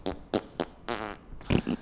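fart sound effects

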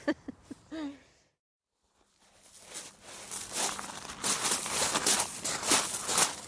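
rain pattering

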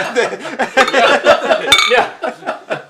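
beer containers clinking

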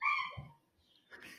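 dog barking

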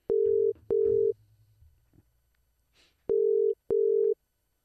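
phone call ringing through

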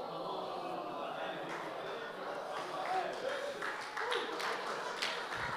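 one person clapping

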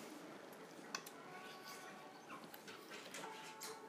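dog whimpering

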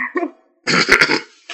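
throat clearing

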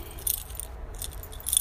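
keys jangling

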